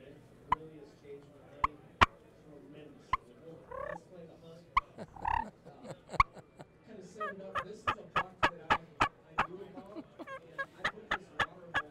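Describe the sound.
Soft hen turkey calls made by a person imitating the bird: a string of short, clucking yelps and purrs, sparse at first and then quickening into a steady run near the end, quiet.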